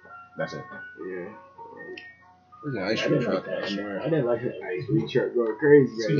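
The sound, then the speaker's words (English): A tinny ice cream truck jingle plays its steady melodic tones, fairly faint, soon buried under several people talking loudly over it. “There's an ice cream truck.”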